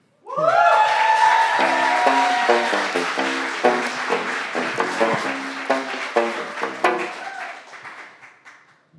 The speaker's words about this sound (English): You gotta clap everyone who comes on until they're ready. Yeah, it's a vibe.